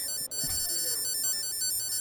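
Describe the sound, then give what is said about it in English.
A mobile phone powering on, giving off a steady layer of thin, high-pitched electronic tones for about two seconds, fairly quiet, with faint low rustling underneath and no talking. “Because I turn my phone on, it's going to take out batteries.”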